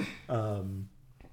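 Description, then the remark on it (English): A single short throat clearing by a woman who had been coughing a lot: a rough, gravelly onset that settles into a low voiced hum before fading, with no speech. “…'s having some issues over there. She was coughing a lot before, so it's probably why.”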